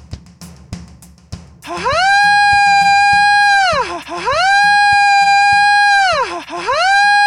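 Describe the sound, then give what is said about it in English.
After a second or so of faint low noise, a loud wailing siren starts, signalling that Senator Jim is going to the Senate floor, sweeping up, holding a high steady tone, then dipping and rising again in long repeating cycles. “That siren is super annoying.”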